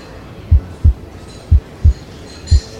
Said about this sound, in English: Well? You were right, my dear. Two heartbeats. He calls himself the Doctor.